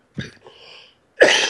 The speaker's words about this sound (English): Both of our sinuses are draining, the full disclosure, so I'm a coughing wreck.